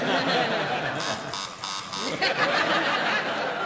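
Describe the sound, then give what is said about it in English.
A quiz show contestant's buzzer goes off in a couple of loud, harsh electronic bursts, with lively voices and a bit of laughter underneath. “Oh, what a time to buzz.”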